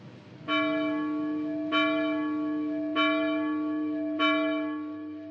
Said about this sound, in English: The bell invites me. Hear it not, Duncan, for it is a knell that summons thee to heaven